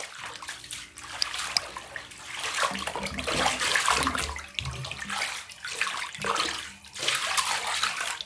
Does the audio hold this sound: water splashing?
yes